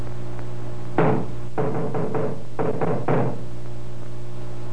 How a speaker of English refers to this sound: Now, give a knock, Sergeant.